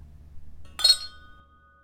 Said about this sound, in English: Today, the oddities of toasting have settled down a bit, but just make sure to look the person in the eye when you clink glasses.